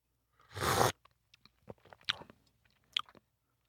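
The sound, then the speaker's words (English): A loud slurping sip of okra coffee, a substitute coffee made from okra grounds, followed by a scatter of quiet mouth clicks and swallowing noises; no one speaks. “Well, you're very brave for drinking it not just once, but several sips.”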